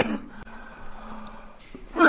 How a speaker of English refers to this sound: Just needed one good cough. Now we're good.